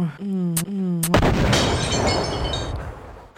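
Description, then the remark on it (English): After a short tonal hum broken by two sharp clicks, a loud explosion sound effect bursts out and rumbles on for a couple of seconds, its noisy roar slowly fading. “Now we have some explosions.”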